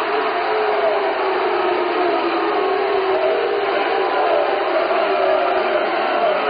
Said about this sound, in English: As you can tell, the crowd did not like that. And the partisan crowd is restless here. A lot of fans from both Ithaca and St. Charles.